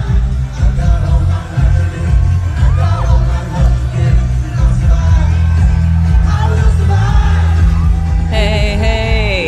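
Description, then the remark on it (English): A huge concert crowd screams and cheers nonstop as a singer appears, loud and distorted, with booming low-end music pounding underneath, recorded on a cell phone. “This is obviously a cell phone video.”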